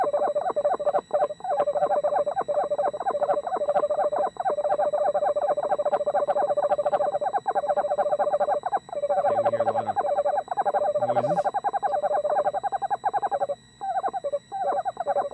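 An owl in a YouTube video calls in a long, rapid string of steady, mid-pitched toots, pulsing evenly like a beeping signal or Morse code with only brief breaks, over a faint background hiss and no voices.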